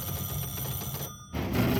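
telephone ringing

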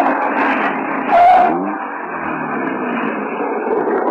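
car driving past

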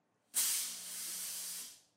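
fog machine hissing

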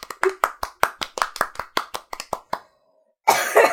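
cough

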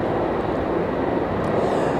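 helicopter hovering overhead

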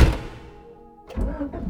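car engine starting

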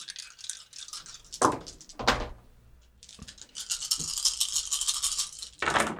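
dice being rolled

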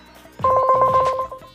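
phone dialing a call

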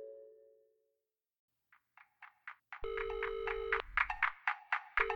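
telephone ringing

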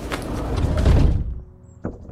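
door being shut

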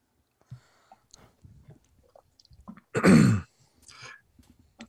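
throat clearing

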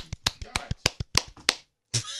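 one person clapping

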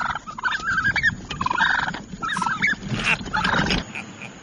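wild turkeys gobbling

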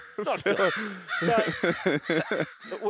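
crow cawing

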